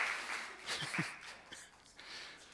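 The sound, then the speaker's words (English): An audience applauds two men with a dense, steady patter of many hands clapping at a fairly soft level, while a voice briefly murmurs underneath partway through. “All right, can you give those two guys a round of applause for us?”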